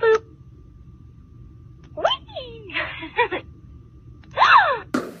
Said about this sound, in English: The doll is also designed where if she sits down, she makes a funny noise. Like she's farting?